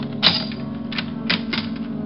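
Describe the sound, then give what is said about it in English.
A visitor trying to get in the door uses a skeleton key that scrapes and clicks inside the door lock, giving four or five sharp metallic clicks at uneven intervals over a steady low hum, with no voices. “I have one of those locks that any skeleton key would fit. And that was exactly what my visitor was using.”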